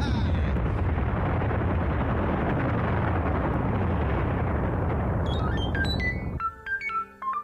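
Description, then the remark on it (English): A uranium cannon fires a huge blast that roars loudly and continuously for about six seconds, its rumble sweeping downward, then cuts off abruptly into a scattering of high electronic beeps. “Lock the portals on the uranium cannon. Come on, come on. Okay. Give me visual. Yeah, there he is. Fire, fire, fire!”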